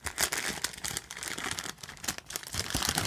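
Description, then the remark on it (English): Wrapping paper crinkles and rips as a gift holding a t-shirt is unwrapped, a continuous burst of crackling and tearing with no voices. “Why is it in this paper? Don't tear it apart.”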